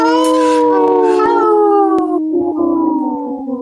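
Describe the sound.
Four people howl together in imitation of wolves, long overlapping wails that slide slowly downward and hold steady, loud, with no talking.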